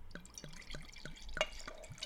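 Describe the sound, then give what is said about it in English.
A 2015 vintage white wine blending Chardonnay and Sauvignon Blanc, aged in stainless steel, glugs from a bottle into a glass in a quick, steady series of gurgling pulses, clear, with no talking. “Let's pour it.”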